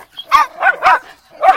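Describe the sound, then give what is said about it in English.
Two dogs bark in a quick, uneven burst of four loud yelps, with short gaps between them and no talking. “They're both barking away.”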